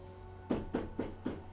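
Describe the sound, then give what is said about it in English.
Four evenly spaced knocks in quick succession on a flat's door, the last door on the floor, with its number hanging slightly out of place; moderately loud, with a faint steady hum in the background and no talking. “Okay, I'll approach the door and I'll knock.”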